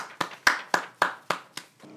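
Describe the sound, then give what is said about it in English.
Six or seven sharp, evenly spaced hand claps in a steady rhythm, fairly loud and crisp, with no voices, like a brief burst of applause from a single clapper. “Applause? Okay.”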